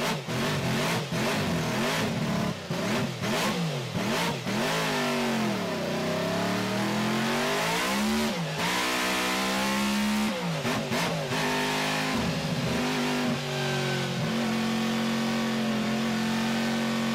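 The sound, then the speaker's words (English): A car engine revs repeatedly up and down as the car is driven in the snow, its pitch sweeping and wavering, then settling into a steady, sustained drone near the end; loud, no talking. “So here's a sound clip of this car.”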